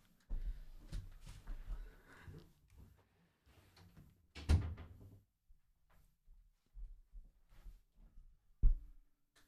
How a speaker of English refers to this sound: Is that door shut? No. Okay, I'm just going to shut the door.